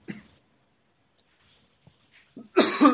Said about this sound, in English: Oh, sorry over here. All right over there? I just coughed.